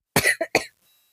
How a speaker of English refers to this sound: We were making it so far without me coughing.